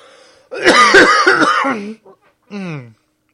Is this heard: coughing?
yes